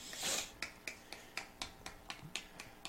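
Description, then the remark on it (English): A series of about ten light, sharp metallic taps in a quick, fairly steady rhythm, fingers rapping on a beer can to keep the suds down, with no talking over them. “The hell is that rapping noise? Keeping the suds down.”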